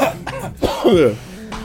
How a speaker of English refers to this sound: Oh god, no, now I'm actually coughing.